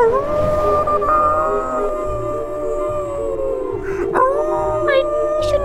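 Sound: wolves howling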